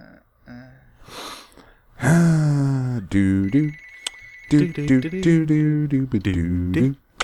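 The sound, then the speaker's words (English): A phone ringtone for an incoming call at 9 o'clock plays in several loud melodic bursts of rich, gliding tones, with a steady high-pitched beep held briefly in the middle and short pauses between phrases. “Who the fuck calls at 9 o'clock?”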